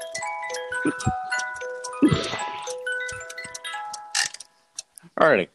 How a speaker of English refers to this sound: There goes the clock again. The freaking clock. The freaking clock. And the other one.